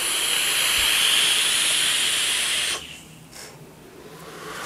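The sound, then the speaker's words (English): A steady, airy hiss of vapour being drawn through a filled Easy Dripper atomizer, 22 millimeters across, runs for nearly three seconds, then stops abruptly, leaving a faint breathy exhale and low background noise. “I've got it filled up in the old Easy Dripper, which has just been, I mean, just one of the best ways. It's the best way to drip.”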